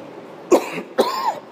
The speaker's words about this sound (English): Excuse me, would not be a show without me coughing.